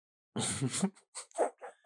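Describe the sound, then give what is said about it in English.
A dog barks: one long, rough, growling bark followed by three shorter, sharper barks in quick succession, fairly loud, with no talking. “Fucking dog, man.”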